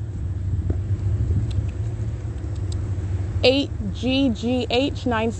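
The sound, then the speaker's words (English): A steady, low rumble of street traffic on Euclid Avenue fills the whole recording, constant, with a voice or two briefly calling out over it near the end. “And also traffic on Euclid Avenue.”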